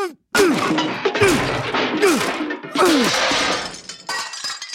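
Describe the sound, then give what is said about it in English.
A bureaucrat hammer smashes a PCD with about four loud, heavy blows in an uneven rhythm. Crunching, shattering debris follows each hit, along with a short falling whine, and no one speaks. “I'm gonna smash this PCD with my bureaucrat hammer.”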